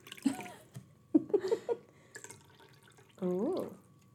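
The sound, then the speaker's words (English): Lemon lime soda is poured to top up a gin cocktail in three short bursts of splashing, gurgling liquid, the last a steadier pour whose tone rises as the glass fills. “So yeah, you top it up with some lemon lime soda.”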